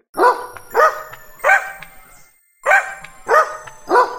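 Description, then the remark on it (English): A dog barks six times, loud sharp woofs in two groups of three with a short pause between, and no talking. “The dog is here.”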